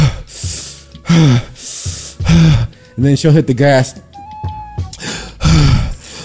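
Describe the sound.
A voice imitates the heavy, nauseous breathing of someone trying not to throw up in a moving car: a run of loud, ragged gasping breaths in a steady rhythm, broken by a short spoken line, then a few more heaving breaths.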